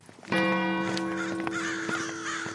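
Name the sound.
crows cawing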